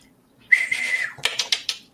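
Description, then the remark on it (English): A person whistles a steady high note, then makes four quick, evenly spaced mouth clicks, voicing an imitation of echolocation. Fairly loud, with no talking. “Going to use Whistling Click.”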